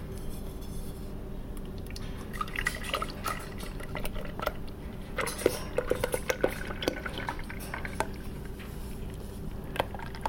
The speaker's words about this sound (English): She's pouring it into the bucket.